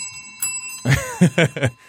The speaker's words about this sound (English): So this is one where I like to ring these bells on.